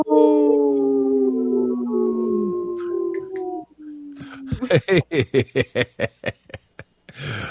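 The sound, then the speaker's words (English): People let out a long, wavering wolf-like howl that slowly falls in pitch, done on a show promoting the wolf-protection group Howling for Wolves. The howl fades into a brief pause before a burst of rhythmic, breathy laughter follows. “Oh, thanks for joining in on that howl”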